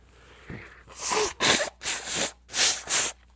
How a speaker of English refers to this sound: Am I allowed to blow my nose on the podcast? Is that okay?